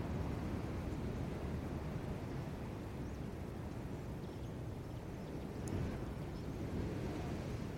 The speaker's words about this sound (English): the distant waves of the ocean.